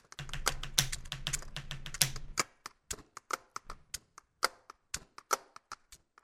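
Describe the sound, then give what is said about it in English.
Rapid pen tapping drums out a beat: a dense flurry of sharp clicks over a low thumping layer for the first couple of seconds, then sparser, punchy taps in a loose rhythm. “Like one of those pin tappers in the back of the class.”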